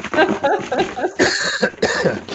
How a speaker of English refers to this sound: What was it? Shake that box.